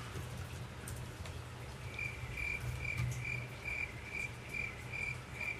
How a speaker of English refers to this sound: I just like listening to crickets. I'm perfectly okay with that.